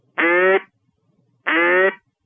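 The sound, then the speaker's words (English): Two loud, buzzy quacks from a mallard duck call, made by saying the word "hat" into the call, each about half a second long with a steady, nasal pitch, separated by a brief pause. “And that gives me that perfect little natural mallard quack.”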